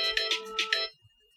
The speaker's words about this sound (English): It wasn't. I know, it's not DoorDash. Not yet. It was an alarm. It's my Lessy Depressy alarm.